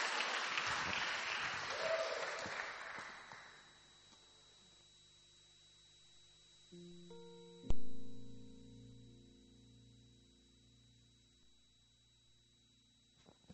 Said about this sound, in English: Put your hands together for her one more time. Amen. Next up, still clapping,